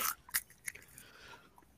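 Cinnamon twists from Taco Bell being chewed, with a few sharp, crackling bites up front, then softer crunching that fades, all without any talking.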